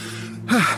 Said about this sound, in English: My husband appears behind us, panting.